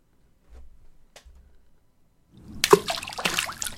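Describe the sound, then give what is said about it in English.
A pebble drops into water with a sharp plop and a short burst of splashing and gurgling. A few faint, soft knocks come before it in near silence. “It's a pebble. Pebble. Don't get the wrong idea. Pebble in the water.”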